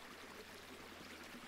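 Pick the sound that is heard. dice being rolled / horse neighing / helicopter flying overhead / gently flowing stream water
gently flowing stream water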